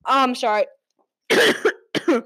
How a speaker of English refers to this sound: Coughing a lot today.